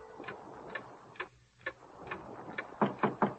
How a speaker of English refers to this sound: A few more minutes, the man said. Mostly, the man watched the clock.